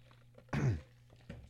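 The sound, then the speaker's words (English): A single forceful cough from a radio host on the air bursts out against a quiet background with a low steady hum, followed by a brief softer sound a moment later. “A rare coughing for me on the air.”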